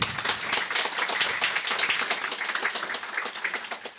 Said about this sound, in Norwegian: Og jeg synes de bare må få en applaus med en gang.